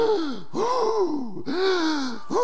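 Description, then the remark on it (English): A man imitates the heavy, strained breathing of a man lifting weights in a gym: three loud rhythmic bursts of breathy, groaning exhalations with no words spoken. “There's a pandemic going on, and you're breathing your breath everywhere.”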